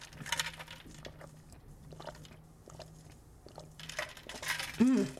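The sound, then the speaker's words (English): Someone sips water: soft wet mouth noises and slurps in bursts, ending with a louder gulping swallow, all over a faint steady low hum. “I'm gonna take another sip of water here, y'all.”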